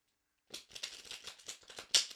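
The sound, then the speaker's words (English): Tarot cards are shuffled after a brief pause to draw a card for a reading: a quick, papery flutter of overlapping snaps and rustles that keeps going steadily to the end, with no voices. “And you can connect to the card just by hearing them being shuffled.”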